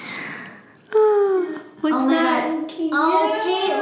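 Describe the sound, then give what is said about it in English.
High-pitched whimpers from tiny golden retriever puppies: three drawn-out, sliding whines in a row, fairly loud, with a little boy's childlike vocal sounds mixed in as the puppies kiss him. “But it's really just a video of a cute little boy and like tiny little golden retriever puppies.”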